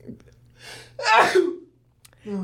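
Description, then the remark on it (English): A single loud sneeze: a quick breathy intake followed by a sharp, explosive burst, with a brief voiced sound just after. “Speaking of sneezes, bro, I had the worst day when it comes to sneezing.”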